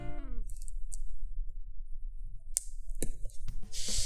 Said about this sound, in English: My scissors are not the sharpest in the world. Hey, babe, we should sharpen our scissors.